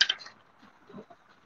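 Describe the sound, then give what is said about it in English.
A short, faint clatter of dice: a few quick clicking knocks at the start, then quieter rolling and tumbling that trails off, with no voices. “But let's see what the dice has to say about it.”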